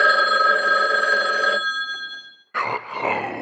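A telephone bell rings loudly, one long metallic ring that fades away, followed by a brief pause before it starts ringing again.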